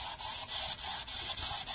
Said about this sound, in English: This ghost box has a beat I can get down to. I shouldn't talk over it in case I actually get something.